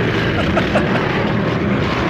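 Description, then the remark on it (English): A motorcycle engine roars steadily, a dense continuous drone that holds at an even loudness with little rise or fall across the short stretch. “Most good motorcycles run on gasoline. This is a bad motorcycle.”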